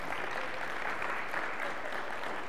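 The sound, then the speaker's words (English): A church audience claps steadily for a group of men, honouring their good work, in a dense, continuous wash of applause with no pauses, holding an even loudness from start to finish. “I want you to see these men, church, and give them a round of applause for the good work that they have been doing.”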